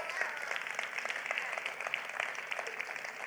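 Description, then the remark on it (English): A church audience applauds together, a dense, steady patter of many hands clapping at once, sustained and fairly loud throughout with no voices standing out. “We can clap for that.”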